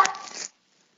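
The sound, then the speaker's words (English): A single deep, harsh bark from one of two Doberman dogs in another room, barking after a car honked at the house next door; it lasts about half a second and then cuts off into silence. No one speaks. “Oh yeah, we've got two Dobermans, so they're in the other room right now.”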